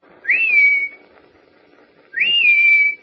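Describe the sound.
A person whistles a signal call to someone out by snowy cabins at dusk, twice, each a loud rising-then-level call lasting about half a second, separated by a pause of over a second, with quiet background noise between.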